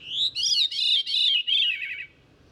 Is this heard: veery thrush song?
yes